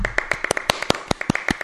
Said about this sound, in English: Yeah, clap.